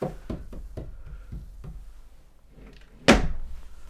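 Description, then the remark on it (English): A door slams shut with one loud, sharp bang near the end. Before it come several quieter knocks or thuds at an uneven pace. No one speaks. “He's so loud at the door. Yeah, he slams it.”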